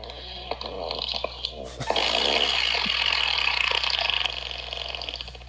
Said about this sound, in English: Gucci Bertels, could I get a poop train sound effect, please?